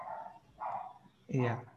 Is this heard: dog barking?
yes